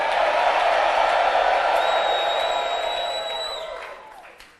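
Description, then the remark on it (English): An audience listening to a sermon claps and gives the Lord a shout, in a dense, sustained wash of applause and voices, with a high whistle-like tone rising over it before the noise fades away toward the end. “Father, bless those who are clapping.”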